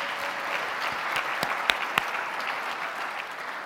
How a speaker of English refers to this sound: Jesus healed me instantly. I mean, big miracle. Yeah, you can clap for him.